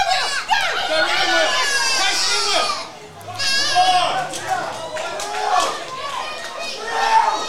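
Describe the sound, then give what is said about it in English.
A loud crowd of young children at an under-eights SAP football final shrieking and cheering together, high-pitched voices overlapping continuously with a brief dip around the third second before the excited yelling surges again. “Crowd really getting involved in this SAP final for the under eights.”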